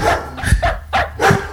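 A dog barks three times in quick succession, loud, each bark short and sharp with brief pauses between, and no one talking over it.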